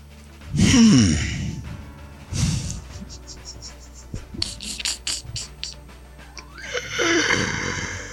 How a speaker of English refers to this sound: I do breathing exercise.